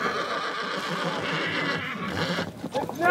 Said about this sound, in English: 50 mile horses! Horses start arriving.